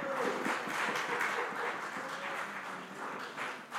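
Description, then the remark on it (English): An audience at a church morning service applauds steadily to welcome two visiting friends from Edinburgh, a dense wash of many hands clapping at once, fairly loud and sustained for several seconds with no speech over it. “Just give them a big applause this morning.”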